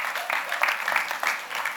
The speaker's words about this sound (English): Ah, oh, the amazing Sam. Give Sam a big round of applause, you know.